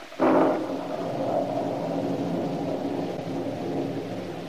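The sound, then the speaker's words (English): A sudden crack of thunder breaks out, then rolls on as a steady, heavy rumble with a wash of rain beneath it, loud and continuous throughout. “the storm which had been gathering strength finally burst in all its fury.”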